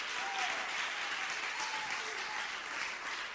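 An audience claps their hands together during a sermon, at the preacher's call, in a steady, dense wash of applause that carries on evenly from start to finish.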